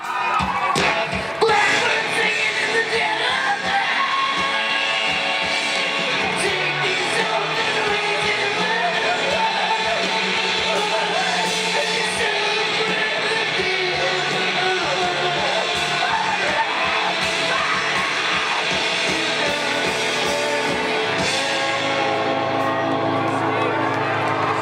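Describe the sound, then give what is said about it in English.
A man screams over loud, heavily distorted live music performed to thousands of people, a dense, unbroken wall of sound with crowd noise mixed in, playing continuously throughout. “And then it just goes extremely distorted and this guy's like screaming over the top and it's like performing to like thousands of people as well.”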